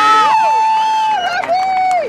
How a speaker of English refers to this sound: and an ecstatic crowd cheering the Azusa Challengers